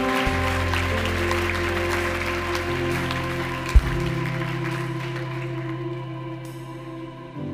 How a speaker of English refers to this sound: Come on, let's give the Lord a clap offering for people saying yes to Jesus.